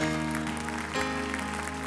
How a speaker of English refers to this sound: Anybody want to clap to that just for one more moment?